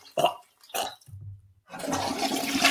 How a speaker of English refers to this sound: Oh, I didn't double flush, but that was a courtesy flush.